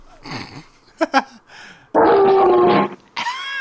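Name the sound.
dog growling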